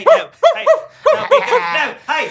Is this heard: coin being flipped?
no